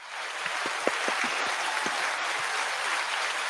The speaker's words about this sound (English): I was thought I was going to have to slap somebody to get a round of applause around here. And honestly, I mean, then it showed up. As soon as I raised my hands, it came up.